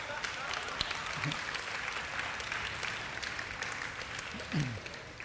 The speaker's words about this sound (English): Yeah, you guys are all like clapping, and you have no idea what I'm going to say.